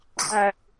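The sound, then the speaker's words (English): A single sharp, fairly loud sneeze, bursting out for about a third of a second before quiet returns. “Bless you”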